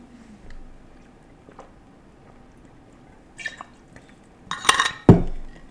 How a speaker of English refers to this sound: So let me get some water here. Jeez. God, my throat's dry.